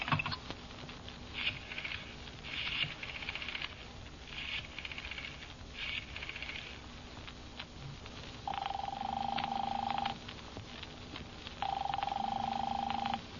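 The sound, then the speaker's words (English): The telephone number 4087 is dialed to call Dr. Mandel in a series of short clicking, whirring bursts, then two long, steady ringing tones sound on the line with a pause between them; the call reaches the Beveridge Funeral Parlor. No one speaks. “I'll call up Dr. Mandel, I say to myself.”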